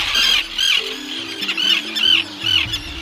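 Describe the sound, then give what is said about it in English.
Harsh, high-pitched tern calls repeat in quick bursts about every half second, loud, at a busy breeding colony on Great Gull Island off the eastern tip of Long Island, New York, over a low rumbling background. “Just off the eastern tip of Long Island, New York, Great Gull Island is a breeding ground for terns.”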